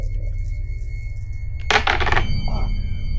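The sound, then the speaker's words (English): A quick clatter of new negative dice tumbling during a dexterity roll, a cluster of sharp clicks lasting about half a second, over a steady low hum and faint sustained electronic tones. “All right, I gotta try these new negative dice.”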